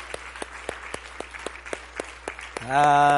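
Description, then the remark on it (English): An audience claps for joy during a church service in an auditorium, a steady, quick rhythm of sharp claps ringing out, before a loud sustained voiced shout swells over them at the end. “Come on, just clap for joy in the house today.”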